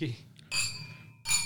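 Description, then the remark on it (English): Two bright glass clinks, a moment apart, each leaving a high ringing tone that slowly fades, as glasses touch in a toast, with faint voices murmuring underneath. “All right, cheers, boys.”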